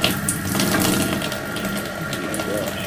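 Steady rushing water pours continuously, a dense hiss and splash of water overflowing from a toilet that keeps being flushed, holding at an even level the whole time.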